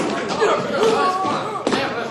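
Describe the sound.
Several heavy, irregular thuds of feet stomping on the floor, with a sharp louder one near the end, while voices murmur and call out underneath.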